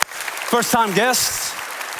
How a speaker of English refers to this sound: Come on, clap your hands. Say hello to everybody.